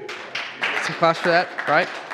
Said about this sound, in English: Edgerton launched Raytown Campus. Come on, let's get some claps for that.